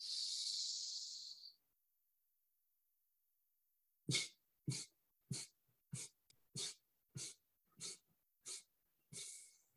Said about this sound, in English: You can go at your own pace. The slower, the better. And then we'll go to eight-part exhale.